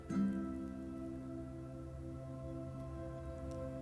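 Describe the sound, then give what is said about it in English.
Soft, wet sloshing from a dog, a continuous watery lapping texture that starts with a brief louder burst and then carries on steadily over a low electrical hum, with no one talking. “If you hear those, like, sloshing noises, this my dog looking.”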